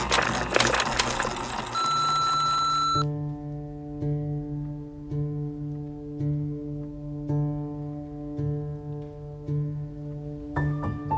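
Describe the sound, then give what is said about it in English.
After a short burst of crackly noise, a single steady electronic answering-machine beep sounds for about a second, then gives way to a low, continuous humming drone with faint pulsing that runs to the end. “Now prepare yourself, for the beep waits for no one.”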